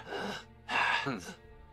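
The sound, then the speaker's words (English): A voice imitates panting with three quick, breathy huffs in a short uneven rhythm, fairly loud, then trails off into a low murmur. “You look down at him and he's you saw him panting for a few seconds and then it's suddenly, like...”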